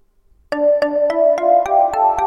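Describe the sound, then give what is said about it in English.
A synthesizer's "Zen bells" preset plays a quick, steady run of about eight struck notes, each with a bright attack over a sustained, shimmering mid-pitched ring. It is moderately loud, with no voices. “Zen bells.”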